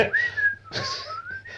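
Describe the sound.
A person whistles a short, breezy melody nonchalantly, the pitch sliding and wavering across a few notes with audible breath between phrases.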